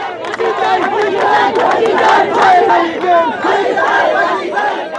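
A large angry crowd of protesters in Bangladesh, demanding action against the owner of a defective building while police battle to control them, shouts continuously, many overlapping voices rising and falling in loud, raucous waves of yelling with no pauses.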